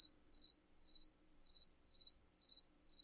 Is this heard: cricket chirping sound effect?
yes